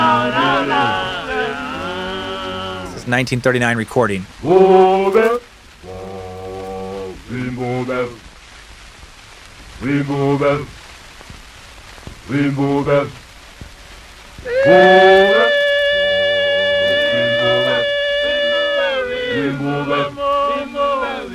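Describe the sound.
An old Zulu choral song recording: a group of male voices sings short, punchy harmonized phrases in a steady rhythm, then a high falsetto lead holds a long note over the choir.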